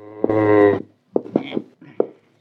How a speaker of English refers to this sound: Got me a herd of cows.